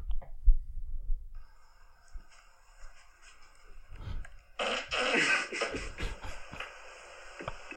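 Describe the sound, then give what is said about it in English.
A short, low rumbling fart from a video of a man farting with his backside near his sleeping partner's face plays back through a small speaker, followed by a steady electronic hum and then a louder, rough burst of noise near the end. “That one's funny because it's a video of his sleeping partner and then he puts his ass right near her face and farts.”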